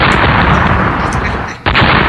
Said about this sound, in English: And the thing about this, this is the explosion.